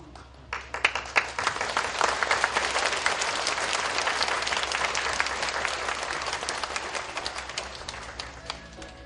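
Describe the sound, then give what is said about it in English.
A crowd applauds steadily to thank His Excellency and the distinguished guests, many hands clapping in a dense, sustained wash that starts abruptly, holds at an even loudness, and thins slightly toward the end, with no voices audible. “Let us please give a big round of applause to thank His Excellency and all the distinguished guests.”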